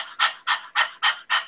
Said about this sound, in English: Again, that was something that I used to do in Kundalini yoga that I thought was a bit bizarre at first. And now it's great. And actually I use it with the panting breath in singing as well.